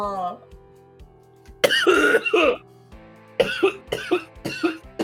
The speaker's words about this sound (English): My coughing is not getting in the recording. All right. I wish it was. I think that would make for better ratings.